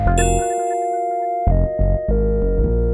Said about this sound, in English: Damn, I forgot to put my phone on silent.